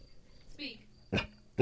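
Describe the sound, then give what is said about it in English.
A dog gives a brief whining sound, then a single sharp, loud bark, with another bark starting right at the end. “You're barking at me. You want to bark into the mic next time?”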